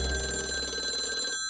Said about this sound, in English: I received a surprise phone call.